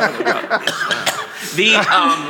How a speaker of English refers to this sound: I don't know why I cough.